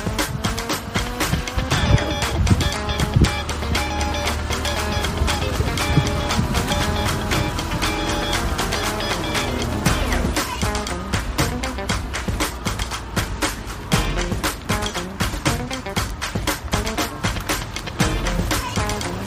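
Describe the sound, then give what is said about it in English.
A car engine runs loud with a steady mechanical churn and a fast, rhythmic clatter of pistons, plus occasional sharper hisses and squeals like brakes. “My goodness, listen to the from the air, the pistons and the brakes.”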